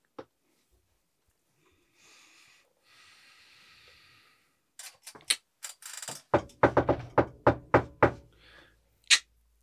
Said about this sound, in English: Oh. There's someone at the door.